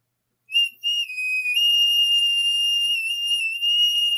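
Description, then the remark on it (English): A small flute plays high, shrill sustained notes, stepping up and down slightly in pitch before settling into one long steady tone, with no voices. “I have this little flute here.”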